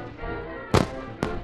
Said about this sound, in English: New arrivals were met by the island marching band, by lines of greeters, and even fireworks shot off from the shoreline.